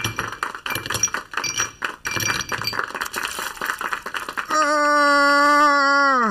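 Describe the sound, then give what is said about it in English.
Glasses clink together over and over in quick, bright taps during a toast, then give way to a steady ringing tone that hangs for a couple of seconds. “Cheers. Get a drink.”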